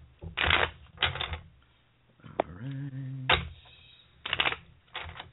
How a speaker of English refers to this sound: I'm going to shuffle a little bit more.